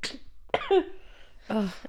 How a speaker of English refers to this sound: I just feel so bad because, like, it's usually me that has that lingering cough. So I feel you.